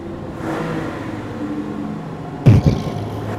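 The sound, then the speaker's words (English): Small engines whine and rev steadily as two small cars, one a Bronco, race at full speed across a garbage-strewn plain toward a lake, dodging junk, with a sudden louder burst of engine noise and rumble near the end. “Two tiny little vehicles are barreling towards JWADOA, like toy cars towards a fat kid.”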